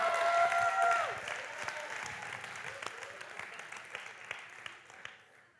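An audience applauds steadily for several seconds, loudest at the start with a high whistle or cheer over the clapping, then the sound gradually thins and fades.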